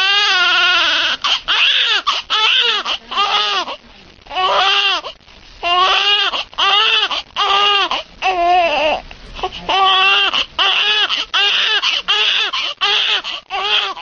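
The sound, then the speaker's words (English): An infant screams and cries in loud, high-pitched wails, repeated in a steady series of rising and falling bursts with brief gasping pauses between them. “So that the sound of a baby crying, if you're not at all connected to a situation, you're like in an airplane or something, then it's just really annoying.”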